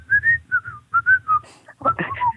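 A person whistles a short, lilting tune, the notes gliding and wavering in quick phrases with low murmuring sounds underneath.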